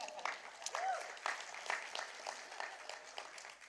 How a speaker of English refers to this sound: Round of applause for the pastor, please.